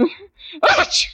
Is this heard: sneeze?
yes